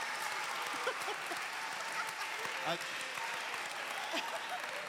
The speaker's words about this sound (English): I think they're clapping for the donut. I think they're clapping for the donut.